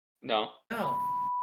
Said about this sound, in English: I have a cussing button. It just goes beep. There it is.